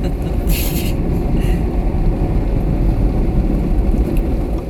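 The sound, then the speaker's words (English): Heard from inside a car going through an automatic car wash as it takes off wax that was just sprayed on: a loud, steady low rumble of churning machinery and water, with a couple of brief hissing sprays near the start. “This is taking off the wax and... All right. That they've just sprayed on.”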